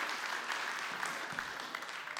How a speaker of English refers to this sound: Come quick. Clap for them. They have no idea what they're getting into.